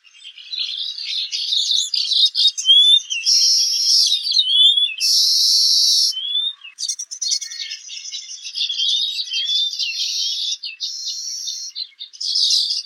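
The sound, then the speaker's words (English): A busy chorus of baya weaver males chirping and buzzing together while building nests in the breeding season, dense overlapping high-pitched notes and wheezy trills running continuously, with no voices. “While busy with their construction, these males celebrate the season with joyous chirping and choruses, often fluttering their wings as well.”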